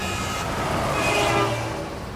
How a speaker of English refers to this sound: Dandong is where the two countries are connected by the iconic Sino-Korean Friendship Bridge. That bridge is one of the few ways to access North Korea and sees a steady stream of transport trucks.